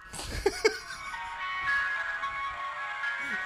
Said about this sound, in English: I love how it sounds kind of evil. It does. There's a dissonance. How many ice cream trucks are we looking at here? You think we've seen maybe... I think there's eight. I think it might be double digit.